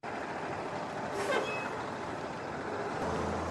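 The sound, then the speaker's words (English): A steady diesel rumble of school buses pulling up to Terry High School in Hinds County, broken by one short, sharp hiss of air brakes partway through, with a low engine drone continuing underneath and no voices. “School buses are pulling up to Terry High School in Hinds County.”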